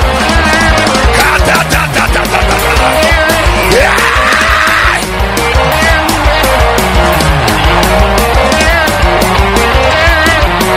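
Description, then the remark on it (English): A large crowd at a sermon shouts and screams together in worship to the glory of God, a dense, loud, continuous roar of many voices with rising shrieks, sustained without pause for the whole stretch. “Come on, scream.”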